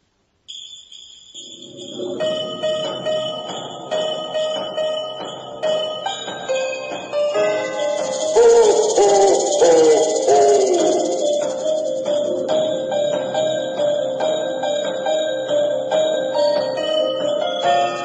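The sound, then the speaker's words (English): A Halloween music track called scary jingle bells, an eerie, spooky take on Jingle Bells, plays for the whole stretch, with steady pulsing rhythm, shrill high tones, and wavering, descending low swells, and no voices. “Play scary jingle bells.”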